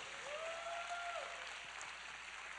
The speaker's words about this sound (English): I ought to have some more claps than that.